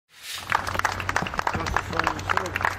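A burst of sustained applause greeting a man as he leaves a New Brunswick courtroom after a not-guilty verdict, many hands clapping in a dense, steady patter, mixed with overlapping crowd voices and a low hum underneath.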